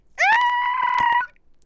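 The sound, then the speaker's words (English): A loud, sustained scream from one person, holding a steady high pitch for about a second before cutting off, with some clattering noise underneath. “It didn't come out as good because you were screaming like a hyena.”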